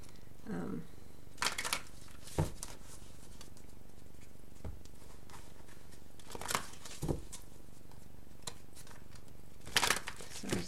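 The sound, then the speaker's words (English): Tarot cards being shuffled: quick papery riffles and soft slaps come in short, irregular bursts, separated by quiet handling noise. “To be shuffled a bit more.”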